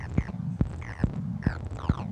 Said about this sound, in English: So that's that low tone that you hear going through the Motormatic being modulated by the Woggle Bug.